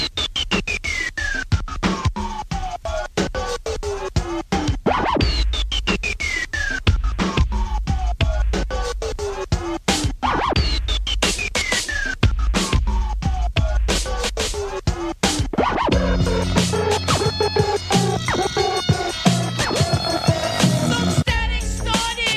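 A hip-hop track with record scratching: loud, sweeping downward scratches recur every few seconds over a steady, dense beat, then a fuller melodic layer joins for the final stretch.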